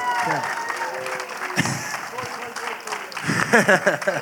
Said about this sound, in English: We all know how hard it is to be vulnerable like that. Hand of applause for Kurt Metzger.